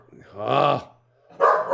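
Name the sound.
dog barking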